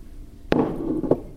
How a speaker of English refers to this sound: Just going to break for a sip of water.